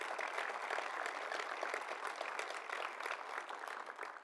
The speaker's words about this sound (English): Let's give a round of applause for all those folks.